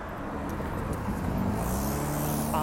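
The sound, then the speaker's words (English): Steady city traffic of cars and trucks rumbles on a sunny, warm spring day with a cool breeze, a low engine drone with hissing tire noise that swells toward the end as a vehicle passes. No one speaks. “Unless you got rid of all the cars and trucks polluting.”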